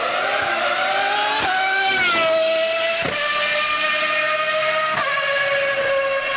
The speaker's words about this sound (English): The 3 liter V12 out of the 1995 Ferrari F1 car. Listen to this.